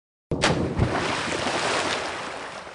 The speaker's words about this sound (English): Throw the anchor.